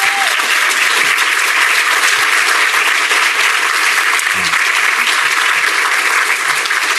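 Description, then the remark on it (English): Sustained applause from a sizeable audience for librarians at an event, a dense, steady wash of clapping that stays loud and even throughout without any speech over it. “Can we have another round of applause for our amazing librarians?”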